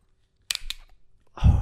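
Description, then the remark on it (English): The tab of an ice-cold drink can is cracked open with two sharp metallic clicks, followed a moment later by a loud hiss of escaping fizz. “Crack an ice cold. Cold one.”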